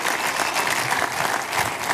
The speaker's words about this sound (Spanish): Dale grandes aplausos al Señor.